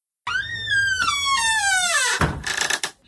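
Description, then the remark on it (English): A long, drawn-out creak of a squeaky door sound effect, its pitch slowly sliding downward before ending in a short rattling thud, loud with no voices. “Squeaky door.”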